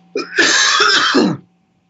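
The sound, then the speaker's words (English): A man's loud fit of coughing and throat clearing: a harsh, rasping burst with several rough pulses lasting about a second, then quiet. “he says as he coughs up a lung.”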